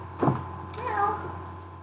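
A single drawn-out cat meow rises and falls in pitch, fairly quiet, following a brief muffled bump just before it.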